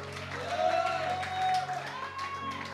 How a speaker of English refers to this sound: Somebody clap your hands and shout to God.